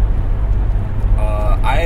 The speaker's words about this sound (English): The fuck is this truck doing?